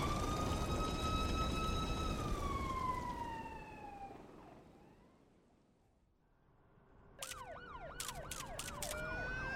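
A police car siren wails steadily over a low rumble, then drops away into a lull before a loud, fast warbling yelp kicks in.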